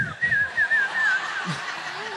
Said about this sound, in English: Can anybody whistle? That's the whistle I'm looking for. So some of y'all were doing like a bird call.